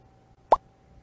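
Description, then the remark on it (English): A single quick quiz buzzer blip as a contestant buzzes in to answer a Star Wars trivia question, a short, fairly loud pop with a rounded mid-pitched tone, sounding once against a faint steady hum with no one talking. “Mac buzzed in”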